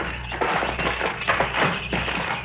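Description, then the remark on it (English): A rusted-through door lock being knocked off: a quick series of sharp metallic knocks and taps in an uneven rhythm, over a steady low hum, with no voices. “I think the lock's broken.”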